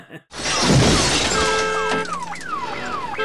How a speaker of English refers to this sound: The fat guy's car got smashed.